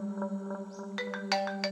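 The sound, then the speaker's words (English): A work phone rings with a steady electronic tone and a quick series of bright, chiming beeps layered on top, loud and clear with no one talking. “And I get one call again, yeah? On the work phone.”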